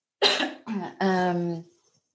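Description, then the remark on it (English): A loud cough in three quick bursts, the last drawn out into a rough, voiced throat-clearing rasp before it trails off into quiet. “I just need to cough 1 second.”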